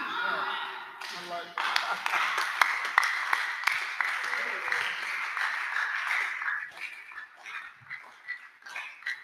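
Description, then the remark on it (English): An audience claps over a dense murmur of many voices, the sharp, uneven claps loud through the middle stretch before thinning out and fading toward the end. “This one clapping, God is blessing your life.”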